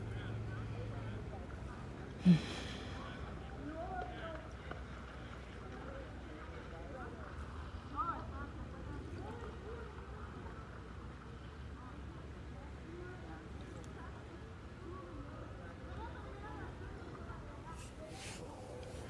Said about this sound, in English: Well, I hope that you have enjoyed this sample of what a hot afternoon beside a lake sounds like.